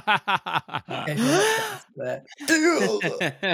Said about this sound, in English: Do I need to repeat my gasp or was that okay? I want the gasp again.